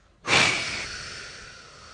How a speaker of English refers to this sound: and then breathe out with a whoosh sound for 8 seconds. So we start with, this whoosh sound should come from mouth. So first we breathe in through nose. Count till 4. Now stop for 7 seconds. And now whoosh sound.